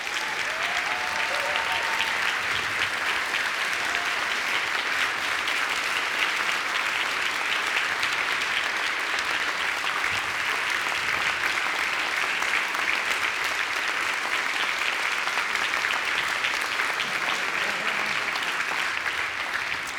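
An audience claps in a loud, steady round of applause that fills all twenty seconds, a dense wash of many hands with no pause or letup.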